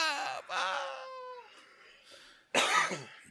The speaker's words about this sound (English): Cough again. I'm always coughing on here. Man, I'm smoking too much.